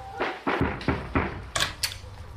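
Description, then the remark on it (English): A mother opens the front door of an ordinary house: a quick run of sharp clicks and wooden knocks as the latch and handle rattle, about six in under two seconds, with no voices. “And if you remember, it was about a nude couple, who turned up on the doorstep of an ordinary house, and mum opens the door.”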